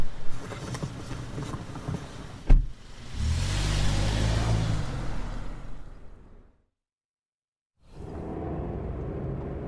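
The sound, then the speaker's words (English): A taxi cab engine rumbles and drives through evening traffic with steady road noise, broken by a sharp thump early on and a brief dead-silent gap before the driving sound returns. “Come on, hop in. But I can't guarantee you getting anywhere fast this evening, pal. Traffic's a nightmare.”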